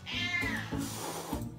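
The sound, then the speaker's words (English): A cat meows in a drawn-out, wavering cry, followed by a couple of shorter meows, with no talking. “Ah, another friendly sound.”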